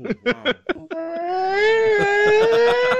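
Ugly crying: a few quick, choppy sobbing gasps give way to a long, loud, sustained wail that wavers and slowly rises in pitch, with no talking.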